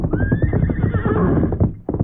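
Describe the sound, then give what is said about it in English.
Silver, the Lone Ranger's horse, lets out a long, loud whinny over a quick, steady clatter of hoofbeats as it comes fast toward the Lone Ranger's camp with an empty saddle. The galloping rhythm continues, with no voices. “It was less than an hour later at the Lone Ranger's camp when Tonto heard the approach of familiar hoofbeats. He hear horse come plenty fast.”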